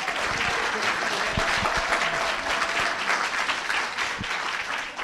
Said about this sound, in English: Wild applause.